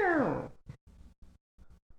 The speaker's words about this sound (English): What was that? What the fuck? I don't know. Was that like a cat? That was like a cat like crashing in an airplane.